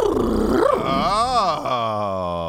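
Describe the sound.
A man's voice imitates a horse neigh: a rough, growly onset sweeping up and down in pitch, then a long wavering whinny that trails off, loud and alone.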